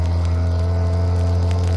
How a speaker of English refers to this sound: Boat coming this way. Uh-oh. It's Mayo.